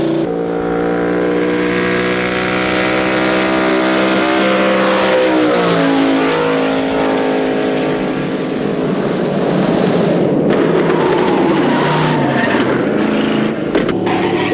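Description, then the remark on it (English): A car engine roars loudly and continuously as the vehicle speeds along to keep ahead of pursuing revenue agents, its pitch climbing and shifting through gear changes, with road rumble and no voices. “Mind if I keep ahead of them? Think you can? I can sure try.”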